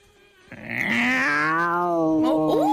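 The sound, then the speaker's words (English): A voice imitates an angry cat, a cat unhappy with another cat, with one loud, drawn-out yowl, starting abruptly and holding a strained, wavering tone to the end. “A cat not happy with another cat is effectively what it is.”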